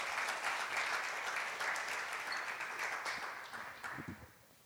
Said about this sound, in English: Would you help me welcome him with a warm round of applause?